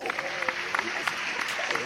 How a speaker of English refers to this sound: Let's clap it up for that.